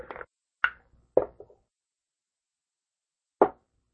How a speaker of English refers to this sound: These dice are fired. I rolled a 20.